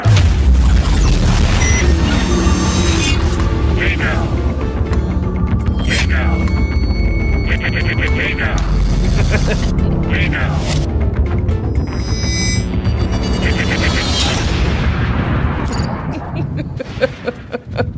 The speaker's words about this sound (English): I just look on Twitter and there's this promo of me going, hey now, hey now, and like a bunch of explosions. I was like, that's awesome.